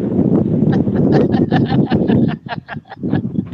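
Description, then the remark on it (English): Strong outdoor wind roars in a loud, gusty rumble during rain, broken by a rapid series of sharp buffeting thumps and flaps that ease briefly near the end. “Oh, it is getting real windy.”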